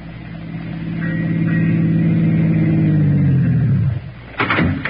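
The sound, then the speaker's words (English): A car engine hums louder as it approaches, then winds down and cuts off as the vehicle stops, followed by a short clunk like a door. “Hey, why don't you drive us right into that drink and be done with it?”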